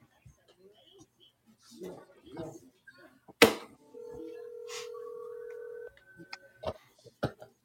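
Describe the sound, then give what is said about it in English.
A phone call to a grandmother being dialed: a few taps and clicks, then a steady electronic tone held for about two seconds, with faint murmuring voices and soft knocks before and after. “I'm calling Grammy.”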